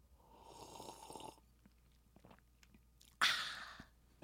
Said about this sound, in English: No, wait. Hang on. Let me take a sip of wine.